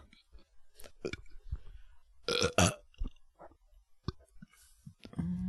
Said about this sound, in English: Okay, let's do the burp, and then let's get out of here. All right, ready?